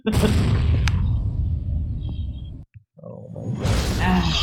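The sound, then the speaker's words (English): Heavy cannon fire heard from behind a door roars in a loud, continuous barrage of deep booms and rumbling, cutting out briefly for a moment before surging back just as dense. “Yes, you hear cannon fire. Lots and lots and lots of cannon fire.”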